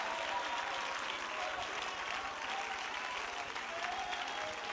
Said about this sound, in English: Shout with a voice of triumph to God above. Why don't you put a hand clap of that praise with that shout to God for a moment.